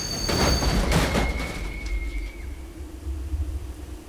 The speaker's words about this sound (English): As Dr. Thompson and Nina crossed the railroad tracks on Inman Street, a train crashed headfirst into his buggy.